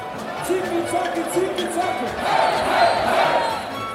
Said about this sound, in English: Welcome to Sprockets, I'm your host, Dieter. Thank you very much for your kind applause on my entrance. I always like a warm hand on my opening.